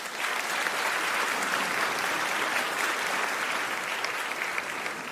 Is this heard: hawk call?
no